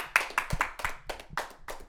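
A quick, steady run of about seven or eight sharp hand claps, fairly loud, evenly spaced with no talking over them.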